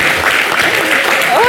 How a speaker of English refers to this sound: Just to let everybody know, the vote did go the right way. We did vote yes for same-sex marriage. So a round of applause for everyone.